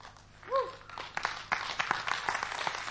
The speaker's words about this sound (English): That's enough. That's enough. Just make certain you clap for Jesus more.